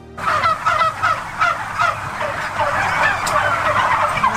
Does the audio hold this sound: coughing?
no